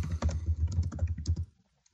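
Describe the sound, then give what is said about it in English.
Rapid, loud keystrokes clatter on a computer keyboard on a desk for about a second and a half, a dense burst of clicks and thumps, then it stops abruptly into near silence. “you have the noisiest keyboard.”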